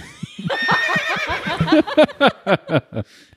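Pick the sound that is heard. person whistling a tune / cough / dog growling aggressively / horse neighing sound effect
horse neighing sound effect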